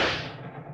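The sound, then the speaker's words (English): A single sharp shot from a small .32 automatic pistol cracks out on a train, bright and loud at the start, then fades through a long rumbling tail with no one speaking. “Open your purse and take out the little .32 automatic you hoped you wouldn't need.”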